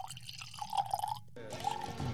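Wine glugs into a glass in a steady, gurgling pour whose tone creeps slightly upward, breaks off for a split second, then resumes; no one speaks over it.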